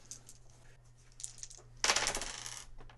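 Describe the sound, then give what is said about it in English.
Dice are rolled during a tabletop role-playing game, coming up a triumph: they clatter onto a hard surface with a few light clicks, then a loud, bright burst of rattling that tumbles and settles over about a second, with a steady low hum beneath. “I'm sorry, I rolled a triumph.”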